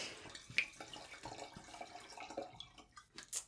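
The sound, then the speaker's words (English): A light New Zealand Sauvignon Blanc wine pouring into a glass, a light splashing trickle with small drips and a bright clink near the end, fairly quiet, with no talking. “Great sound. I like how it does actually look like water.”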